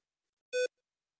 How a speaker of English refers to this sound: Oh, let me see. I got a beep here to answer. Nope, looks good.